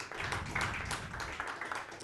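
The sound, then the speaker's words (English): An audience claps together in a steady, dense wash of applause when asked to clap if they have been in a relationship for a long while; many hands blend into a continuous crackle at an even loudness, with no one speaking over it. “Clap it up if you've been in a relationship for a long while.”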